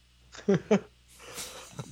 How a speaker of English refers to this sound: Oh, yawn number six. Yeah, maybe six and a half?